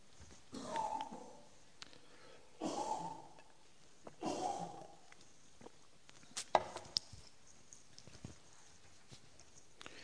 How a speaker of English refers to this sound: Excuse me about this cough.